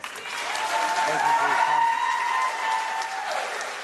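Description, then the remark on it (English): Loud, sustained applause from a crowd at a Board of Education meeting fills the whole stretch, a dense wash of clapping with cheering and whooping voices mixed in, holding steady before easing slightly at the end. “Listen to that thunderous applause.”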